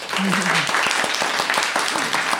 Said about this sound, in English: In the bijou surroundings of Durham's Gala Theatre Studio, and we are delighted to welcome as our guest, little round of applause, please,